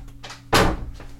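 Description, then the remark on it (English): A door shuts with a solid thump that rings out briefly, followed a moment later by a softer click as the door is locked. No one speaks. “I locked the door,”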